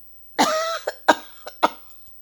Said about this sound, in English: that's why I have this itching, so I want to cough again.